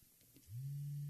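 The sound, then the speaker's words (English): A phone rings with a loud, steady low buzzing tone that starts abruptly after a quiet moment and holds unbroken to the end, with no talking. “You can mute the phone when it starts ringing, but you can't mute the vibration thing around your neck.”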